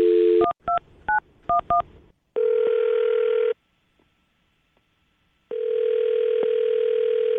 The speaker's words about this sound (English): Well, I'm going to dial his phone number right now and see if we can figure it out, okay?